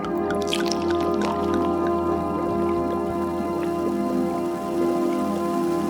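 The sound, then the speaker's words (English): Champagne is poured into a glass, a steady gurgling stream with a crackling fizz of bubbles that continues for several seconds, with no voices. “Would you like me to pour you another glass of bubbly?”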